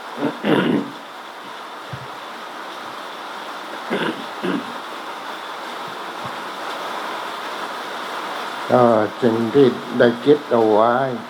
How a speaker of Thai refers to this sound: เอาเสียงฝนเป็นเบรกกล่าวแล้วกัน